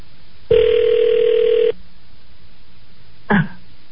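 A single ringback tone from an outgoing phone call to a governor's office, a steady electronic hum lasting about a second over a thin line, followed by quiet hiss and a brief throaty noise.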